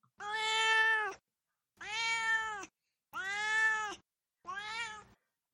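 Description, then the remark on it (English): A cat named Duarte meows four times in a row, each call long and drawn out with short pauses between, loud with no talking. “Now it's time for Duarte's Corner, where my cat Duarte shares his opinions about the book.”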